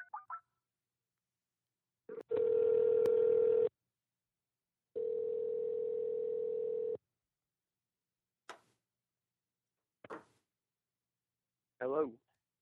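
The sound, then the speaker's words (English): A steady telephone dial tone hums in two long stretches, followed by a few brief beeps and clicks of a number being dialed to call someone back, ending with a short warbling tone. “Yeah, should we try to call him back? Sure, we can. Let's see if I can do that.”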